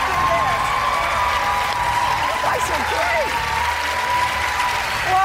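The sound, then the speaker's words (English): A large crowd at a CNN event applauds loudly and steadily as Massachusetts Senator Elizabeth Warren is welcomed to the stage, with whoops and cheers rising above a dense, continuous wash of clapping that holds at full strength throughout. “That is a very enthusiastic crowd.”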